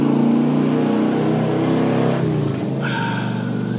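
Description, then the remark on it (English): A motorcycle engine revs loudly and steadily outside, its throaty drone rising and dipping in pitch over a few seconds, with no voices over it. “Distracting myself, not thinking about things, and it's a pretty dope motorcycle.”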